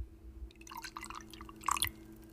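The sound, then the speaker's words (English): Fireball cinnamon whisky trickles into a shot glass for a Cinnamon Toast Crunch Shot in a short gurgling pour, with brighter splashy glugs near the end as the glass fills, over a steady low hum and no talking. “All right, first up, we're gonna add in a little bit of Fireball.”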